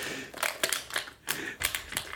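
A plastic water bottle crunches and crackles as it is picked up and sucked on, in a quick series of sharp, irregular bursts, several crinkly pops clustered together with brief pauses between, with no talking.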